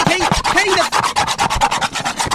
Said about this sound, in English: And now I've got to. Now I'm gonna take the scissors. I'm just gonna hey, scratch.